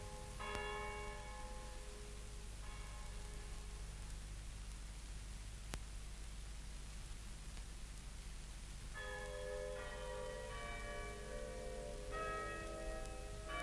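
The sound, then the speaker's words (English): A clock strikes with resonant, bell-like tones, several slow chimes that ring out and fade, with a long gap in the middle, over a steady low hiss and hum. No one speaks. “What was that just struck? I don't know. Must be about 8 o'clock.”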